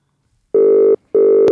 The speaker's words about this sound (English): I've actually got a quick phone call. Oh, here we go.